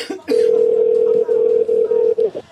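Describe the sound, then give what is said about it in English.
A steady electronic ringing tone of an outgoing phone call hums loudly for about two seconds, one unbroken pitch with a few tiny dropouts, then cuts off. “Oh, it's ringing. It's ringing.”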